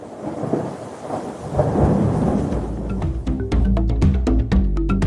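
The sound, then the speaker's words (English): A nighttime thunderstorm with a deep, rolling rumble of thunder that swells partway through, over a steady wash of heavy rain and sharp crackling spatters, loud, with no voices. “The rain is not on our side tonight.”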